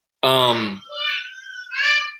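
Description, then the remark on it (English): A young girl, the speaker's youngest daughter, screams in the background: one loud, strained wail followed by two shorter, shrill high-pitched squeals, with no other talking. “Apologies, my youngest daughter is screaming for some reason in the background.”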